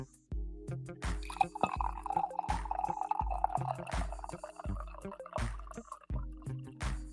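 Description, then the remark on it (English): Coffee pours into a cup in a steady trickle lasting several seconds, with a regular low thumping beat running underneath the whole time. “but let's get a solid coffee pour here to get us off on the right foot.”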